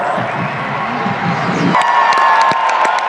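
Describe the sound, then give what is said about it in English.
A loud concert crowd roars and cheers, with a woman from Macedonia letting out a shrill, sustained scream as she cheers for the Macedonian song, over a steady wash of crowd noise and a few sharp claps or whoops. “Can you hear the lady screaming? The lady screaming who's sat next to me.”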